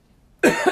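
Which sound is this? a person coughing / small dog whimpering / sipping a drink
a person coughing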